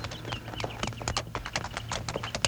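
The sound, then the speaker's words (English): Rapid, overlapping hoofbeats clip-clop on a hard surface, a dense rhythmic patter of several horses belonging to bandits, fairly steady and moderately loud, with no voices. “Then, just in time, Bill spotted the bandits' horses.”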